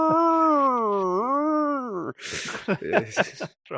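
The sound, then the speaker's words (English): A long, wavering dog-like howl rises and falls for about two seconds, then gives way to a brief jumble of sharp, yappy sounds and muffled voices. “Yeah, and all the dogs barking.”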